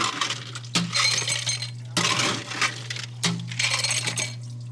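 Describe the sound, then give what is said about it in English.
Ice cubes for a drink being prepared clink and rattle into a glass in three separate bursts of bright, jangling clatter over a steady low hum, with no one speaking. “Let me grab some ice.”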